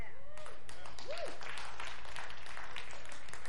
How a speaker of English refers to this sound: Yeah. I'm totally good with you guys applauding. This is not a correction for your applause.